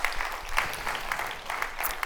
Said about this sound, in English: And we rejoice in that. That is worth clapping for.